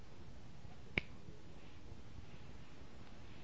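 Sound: finger snap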